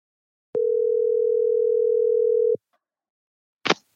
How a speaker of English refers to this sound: A phone call.